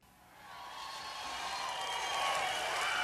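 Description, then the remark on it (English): A crowd applauds, the dense patter of many hands swelling within the first half second and then holding steady and loud for the rest of the three seconds, with no talking. “People clapping.”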